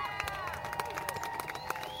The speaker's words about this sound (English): Yeah, I heard somebody just scream "yeah" in the crowd. I never noticed that before.